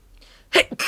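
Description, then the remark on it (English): After a moment of near silence, someone sneezes once, sharply, a loud burst of breath followed by a short exhale and the start of another breathy sound. “Bless you.”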